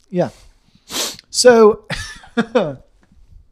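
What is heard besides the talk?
sneeze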